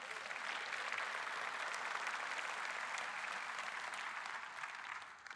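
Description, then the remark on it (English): An audience claps steadily for about five seconds, a dense, even wash of many hands with no voices over it, fading slightly at the very end. “You can clap for that.”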